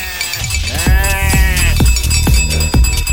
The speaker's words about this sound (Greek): Αυτό εδώ ξέρεις πως λέγεται. Ο ποιο? Που φοράνε τα κατσίκια, τα αρνιά. Κουδούνα.